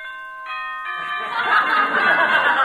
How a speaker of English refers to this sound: Okay, Killer, it's your big moment. Here's the bell for the first round.